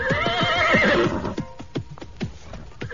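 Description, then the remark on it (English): A horse gives a loud whinny lasting about a second as its rider pulls it up and dismounts, followed by several scattered hoof clops and shuffling steps on hard ground. “I pulled up my horse and dismounted.”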